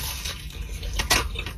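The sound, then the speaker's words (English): Crisp crunching of a bite into a hash brown ice cream sandwich made from two McDonald's hash browns and an Oreo McFlurry, a dense crackly burst with one sharp louder crunch near the end, moist and slightly squishy underneath. “Salty, crunchy, potatoey, sweet. Listen to that.”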